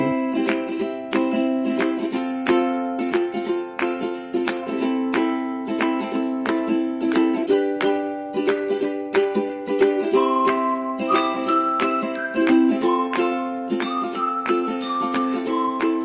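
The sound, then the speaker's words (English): Bright, bouncy music of the kind used in YouTube pre-roll ads, with quick plucked ukulele strums and a whistled melody that rises and falls over them, playing steadily at an even volume with no voices. “Whistling and ukulele. It's the worst combination you can get.”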